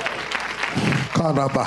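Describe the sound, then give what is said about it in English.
A church audience claps steadily for the Holy Spirit in a dense, sustained patter, with a voice rising over the applause toward the end. “Can we clap for the Holy Spirit?”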